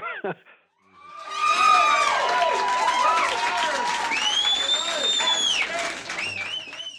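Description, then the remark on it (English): A large audience at a live concert, heard on a live album, shrieks and cheers nonstop, a dense wall of high-pitched overlapping screams with some clapping, loud and sustained for several seconds after a brief opening sound. “One of the things that a lot of people complain about the album, they say they love the actual songs and the tracks, but they, you know, they don't like the screaming and it's too much for them.”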